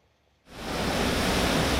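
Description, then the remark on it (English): A loud, steady roar of a rushing flood-swollen river bursts in after a brief quiet moment and churns on continuously, dense, with no voices. “Flood-swollen rivers even sweeping away buildings.”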